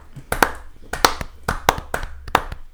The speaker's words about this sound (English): Slow clap for me.